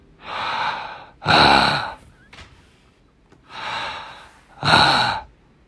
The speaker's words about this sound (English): I wonder if I just make these breathing sounds.